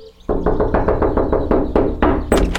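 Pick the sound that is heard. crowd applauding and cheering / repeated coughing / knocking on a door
knocking on a door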